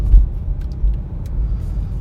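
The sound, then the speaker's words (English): Steady air rushing from a car's air conditioning, set too low, blended with a deep, continuous interior rumble. The noise holds fairly even throughout, moderately loud, with no one talking. “Sorry, I just hit my AC too low, and I'm not trying to freeze right now.”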